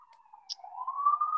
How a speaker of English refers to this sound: Wow, that friggin' siren should shut up, huh?